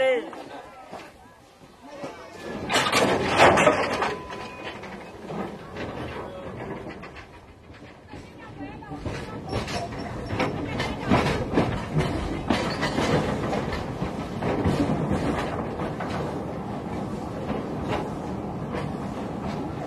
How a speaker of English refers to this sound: I've got sounds of trains, steam trains, running through the Mozambican bush.